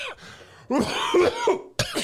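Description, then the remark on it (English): Someone lets out a few exaggerated, put-on coughs: a short rasp, then a long drawn-out hacking burst, and another sharp cough after a brief pause. “I feel like at 90, your peen probably developed a cough.”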